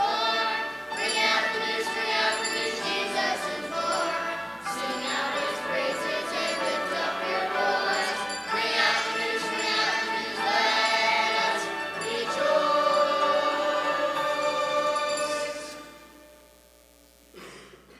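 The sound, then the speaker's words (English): A bell ringer rings bells continuously and fairly loudly for about fifteen seconds, their overlapping metallic tones blending into a steady clangor before tapering off and fading at the end. “The bell ringer's starting up again.”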